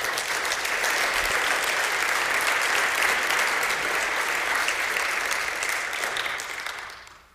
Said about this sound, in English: Folks, we missed an opportunity to praise today, because 19 kids were saved on Thursday. That's an opportunity to praise the Lord. We should be cheering.